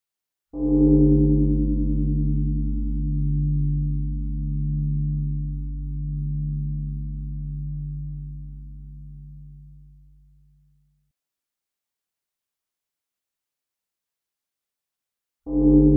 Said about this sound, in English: Before we begin, let's take a moment to listen to the sound of the bell 3 times. Just relax and enjoy, and let the waves of sound wash over you.